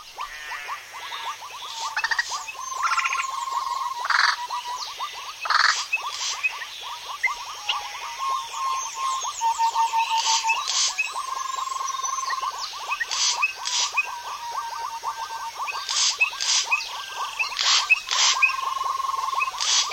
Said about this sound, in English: an audio adventure to the wooded swamps of northern Venezuela. Recordist Jean Rocher presents the Wonder Frogs.